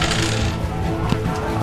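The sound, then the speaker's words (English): Dice clatter across a table in a short burst of light, sharp clicks and rattles, with a steady low hum in the background; a roll made with a penalty die, coming up 96. “That was my own die, so whoops.”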